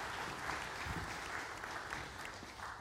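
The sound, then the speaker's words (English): A church audience applauds steadily as a missionary family the church supports comes up, a dense, continuous patter of many hands clapping at an even, moderate loudness with no voices rising above it. “You may have applause as they come on up.”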